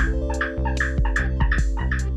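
A Borneo eared frog gives a rapid run of loud, rasping chirps, about half a dozen bursts in quick, uneven succession, clear with no voices.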